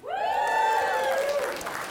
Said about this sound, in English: Come on. I was not expecting that. I was expecting like a singular clap from my mum. So I'm really excited that you all joined in.